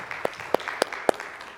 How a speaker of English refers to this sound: Let's give him another hand clap, if you wouldn't mind, together, please.